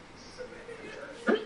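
A single short, sharp sneeze bursts out near the end, louder than the quiet background murmur before it.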